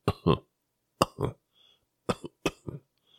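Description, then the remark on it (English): A voice imitates small coughs, fairly quiet, in four quick pairs of short hacking bursts separated by brief pauses, with no talking around them. “Steve began to cough, little small coughs.”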